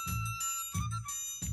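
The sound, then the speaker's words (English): An old song plays in the background, with bright, ringing chime-like notes over a steady low bass pulse that repeats in an even rhythm. No one speaks. “Oh, it's a really, really old song.”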